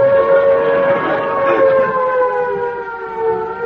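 An air raid siren wails loudly and steadily, its sustained tone rising and falling slightly in pitch throughout, with no voices.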